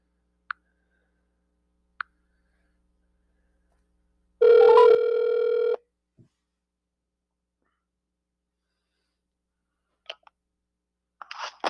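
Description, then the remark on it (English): A phone rings once, a steady electronic burst of about a second and a half, with scattered sharp clicks before and after it and no talking. “So let's get him on the phone and get this podcast rolling.”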